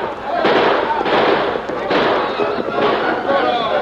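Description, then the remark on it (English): A chaotic flurry of gunshots in a shootout between outlaws and men from a wagon train led by the Lone Ranger: sharp cracks and pops repeating in bursts every second or so over a dense, noisy roar, with shouting voices mixed into the din. “We fired those shots.”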